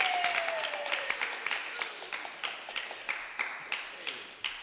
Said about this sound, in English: Well, I want you to keep that going for him. He's a great guy. Runs the show with me. Put your hands together right now. Start clapping right now